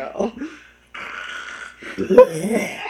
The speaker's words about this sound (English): I don't know what you're coughing up, but you better see.